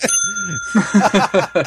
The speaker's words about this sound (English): My smoke alarm. Oh, no, it stopped going. Oh, my wife must be cooking. The smoke alarms are going off there if you hear it in the back.